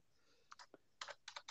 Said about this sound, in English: I can hear you typing it down.